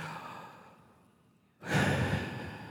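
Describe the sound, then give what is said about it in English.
A slow, soft inhale, a brief pause, then a louder, breathy exhale that rushes out and fades. A single deep breath, alone, with no talking. “Did you feel the air come in, the air go out?”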